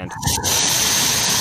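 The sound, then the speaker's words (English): A steady, loud hiss of an Axe Apollo aerosol body spray, sprayed onto a hand, starts after a brief pause and continues without a break, with no talking over it. “It's the X, Apollo spray. We end it now. It's getting out of hand.”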